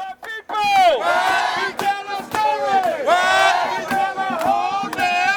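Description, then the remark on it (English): A crowd at the Labor Solidarity with Writers March and Rally cheers and shouts loudly and continuously, its voices swooping up and down in pitch in roughly second-long surges, with no clear speech. “kicking off the Labor Solidarity with Writers March and Rally.”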